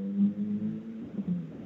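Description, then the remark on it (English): A cartoon boing sound effect: a single springy, twangy low tone that wobbles and warbles in pitch for under two seconds, heard on its own with no talking. “He said go hard, and we got the badoing.”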